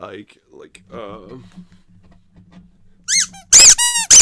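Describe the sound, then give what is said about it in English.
A bear-shaped squeeze toy of plastic or rubber, made around 1984 by Stallwood Toy Company, is squeezed several times in quick succession, producing loud, high, whistling squeaks, following a stretch of softer voiced sounds and a low background hum. “so this is a Papa Bear squeeze toy that's made out of plastic or rubber, and there were a handful of toys that they made at the same time, all about 1984.”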